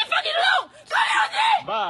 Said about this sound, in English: He's got to be a little bit afraid because she's screaming, and anyone who walks into the situation will immediately think, black dude, like Asian lady, let's tackle this guy.